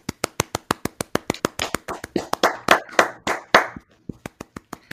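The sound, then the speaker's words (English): A burst of rhythmic, celebratory hand clapping, steady sharp claps with a brief flurry of overlapping voices cheering in the middle, then a few final claps as it winds down. “Can we all just have a celebratory clap right now?”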